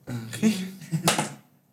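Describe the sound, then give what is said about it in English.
Dice rolled during a tabletop game clatter and click against one another in two short bursts of sharp, bright taps, one die landing on another, with a voice murmuring underneath the rattle. “Oh, that one landed on another dice.”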